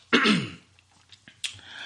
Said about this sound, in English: So let us get into it as we recite this classic hip hop soliloquy in the King's English. Clear my throat.